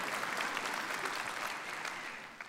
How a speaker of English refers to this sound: You can clap. That's good. You can do that.